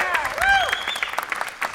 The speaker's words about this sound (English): And once again, everybody, one more round of applause for Mr. Leonard Maltin. Yay!